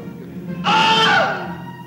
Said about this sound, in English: It's in all the Star Wars films. It's in all the Indiana Jones films. So far, there's over 200 films that it's appeared in. The man getting bit by an alligator and he screams.